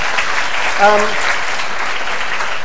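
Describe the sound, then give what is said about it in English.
An audience applauds with steady, dense clapping that fills the whole stretch, congratulating a woman whose daughter is getting married next week, and a brief voiced shout or cheer rises above it near the first second. “Congratulations, round of applause from everyone.”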